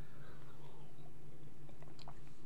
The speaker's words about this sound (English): I'm drinking my little Voss water today. I don't have Fiji, Voss water. And without further ado, let's crack it open. First sip.